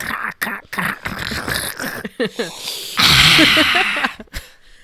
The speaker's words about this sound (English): This one you're just getting snot sounds, so that's great for you.